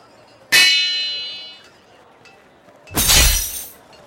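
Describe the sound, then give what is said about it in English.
A hammer strikes a golden-armed metal robot, or golem, with a loud, ringing clang that hums for about a second, followed by a harsher, noisy crashing impact. No voices. “This hammer will put an end to you.”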